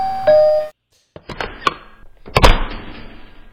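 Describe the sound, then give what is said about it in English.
A doorbell chimes with a short tonal ring that cuts off abruptly, followed by a pause and then the clunks, rattles and thuds of a door being unlatched and swung open. “you ring on a doorbell and then the door opens”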